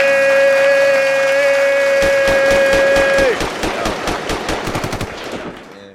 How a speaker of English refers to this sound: I couldn't hear you over the gunshots. Nah, there's definitely a lot of gunshots going on. I can hear them through the headphones.